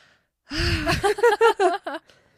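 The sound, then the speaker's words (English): A voice imitates the character Jake's heavy panting: one long, rough breath followed by about five quick, rhythmic huffing gasps, fairly loud, then silence. “He's panting.”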